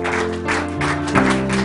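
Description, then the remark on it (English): An audience claps hands in praise to God in a dense, steady patter of applause, with sustained music tones underneath. “Now give Him a hand clap of praise, everybody.”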